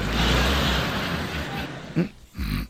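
A man snores: a long, rough, rumbling breath gives way to two shorter snorting grunts, fairly loud and with no talking.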